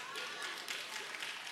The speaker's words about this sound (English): Somebody's clapping.